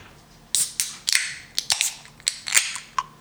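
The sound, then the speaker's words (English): A beer can or bottle being opened: a quick run of sharp, bright metallic clicks and cracks with brief hissy bursts, moderately loud, with no voices. “let's open her up”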